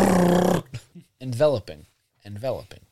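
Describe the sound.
A person imitates a growling dog with a harsh, raspy burst followed by a few shorter throaty, snarling vocal bursts, loud, separated by brief pauses.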